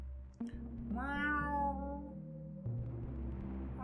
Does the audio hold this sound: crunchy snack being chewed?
no